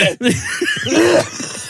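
A loud, deliberate burst of harsh, rapid, hysterical coughing that runs on for over a second, the raspy hacks blending into strained, laugh-like vocal sounds.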